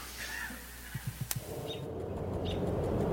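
Faint bird calls from high up in a tree chirp a couple of times over a steady background hiss, after a short run of soft knocks and a sharp click near the start.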